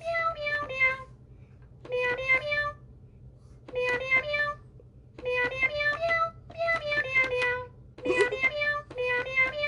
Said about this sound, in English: Okay, so that's the meow.